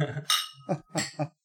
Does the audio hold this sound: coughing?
no